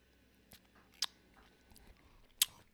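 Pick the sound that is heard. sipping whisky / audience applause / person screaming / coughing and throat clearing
sipping whisky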